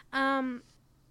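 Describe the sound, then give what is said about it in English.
A single short meow from a pet cat named Shammy, fairly loud, with a steady, slightly falling tone lasting about half a second, then quiet. “Did you hear that? He meowed.”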